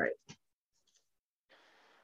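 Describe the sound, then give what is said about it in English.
A deck of oracle cards being given a poker shuffle: a few sharp flicks and taps, a short pause, then a steady papery riffle rushing through the final half second. “Had to give them a little bit of like a poker shuffle because I haven't pulled from them in a while.”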